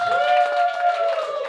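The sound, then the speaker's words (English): An audience cheers loudly for a guest, with a sustained high whooping voice riding over a dense wash of applause, continuous throughout. “All right, now let's get all the boos out of our system and cheer”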